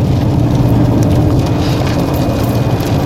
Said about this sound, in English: Well, hopefully y'all aren't picking up on too much of the ASMR sounds that I've got going on in the background here. We've got rain. We've got some pretty loud truck noises. I've got the windscreen wipers going back and forth.